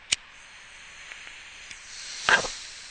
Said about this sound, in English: Sorry for banging the mic. I just wanted you to hear that I'm taking a hit.